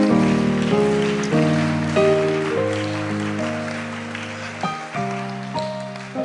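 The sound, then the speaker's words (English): A church audience claps steadily in a dense, crackling wash of applause, mixed with sustained organ-like chords that shift every second or so, with no one speaking. “Oh, if you're clapping, clap well.”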